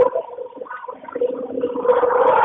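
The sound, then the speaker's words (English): Loud, harsh rumbling train noise heard over a phone line, a continuous grinding roar that swells and grows denser toward the end, with no talking. “Are you on a train? I am on a train. That is incredibly loud.”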